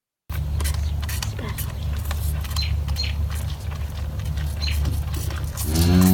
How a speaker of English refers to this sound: So Mama's our most loyal cow. We can go right up to her and pet her.